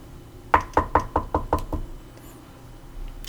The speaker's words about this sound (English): Excuse me, is there... I think there's someone knocking on the door.